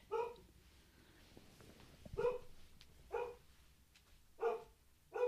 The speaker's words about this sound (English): Hold on one second. Let me go get him under control. Because I'm only partway into this, so get that drum, drum, drum of that barking out of my ears.